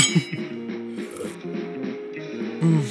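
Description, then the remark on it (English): Cocktail glasses, one holding a Manhattan, clink together in a toast, leaving a bright, ringing chime that lingers, with a second touch of glass near the end. “You're Manhattan? Oh, thank you. Cheers.”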